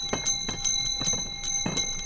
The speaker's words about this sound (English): Yep, it's the season when these ice cream cart bells ring out in Chicago sidewalks, parks, and beaches.